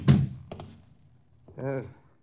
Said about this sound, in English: Close the door, knuckle brain. There's a draft to me back.